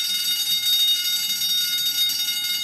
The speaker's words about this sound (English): The deafening alarm bell sounded, and the whole launch exploded into life.